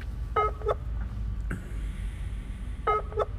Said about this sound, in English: Now, ringing Harrison here.